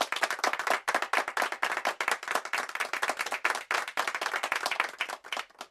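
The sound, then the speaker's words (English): A steady burst of hands clapping, many sharp overlapping claps in a fast, continuous rhythm like a small group applauding, with no talking. “wanting to express appreciation for it using these two long things hanging at your sides to make a noise”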